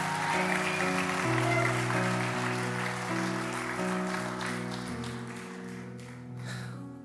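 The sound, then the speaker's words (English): A church audience claps steadily for several seconds in praise to God, a dense wash of hands, while sustained organ or keyboard chords play underneath and shift pitch a few times. “Somebody give God a 5-second hand clap and praise right now.”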